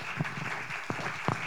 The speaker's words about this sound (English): Y'all clap it up for our guest, Michael Blue Williams.